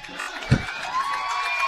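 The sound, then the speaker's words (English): A football stadium crowd cheers at night as fans are urged to make noise during a red-zone play, in a steady, roaring wash of noise, with one brief low thump early on and a thin whistle-like tone running underneath. “They are encouraging the fans to make some noise here tonight.”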